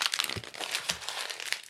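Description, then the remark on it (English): Paper is crumpled and stuffed into the bottom of a drinking glass for an experiment: a continuous crinkling with a few sharper crackles and soft thumps, no voices present. “will you stuff that paper into the bottom of my glass here while I fill up the dish with water?”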